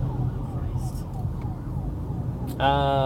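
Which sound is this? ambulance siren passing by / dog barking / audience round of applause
ambulance siren passing by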